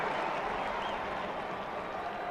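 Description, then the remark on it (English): A stadium crowd at a South Florida (USF) versus BYU football game cheers a fourth-and-one handoff that is spotted for a first down. The cheer is a steady, unbroken roar, a dense wash of many voices holding at an even level for a couple of seconds, with no single speaker standing out. “The crowd's excited about it, but where the spot is, that would be first down.”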